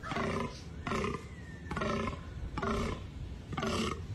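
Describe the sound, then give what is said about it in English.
A fallow deer buck's rutting groan during mating season at Woola Rock Museum and Wildlife Preserve in the Osage Hills southwest of Bartlesville, a deep, rough belch repeated five times in a steady rhythm about a second apart, loud with no voices. “Now that is a fallow buck.”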